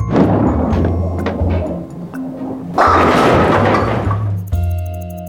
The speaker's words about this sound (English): In bowling, you roll a heavy ball toward bowling pins. Bowlers try to knock over as many pins as possible.